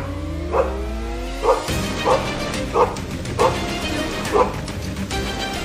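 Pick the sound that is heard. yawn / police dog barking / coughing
police dog barking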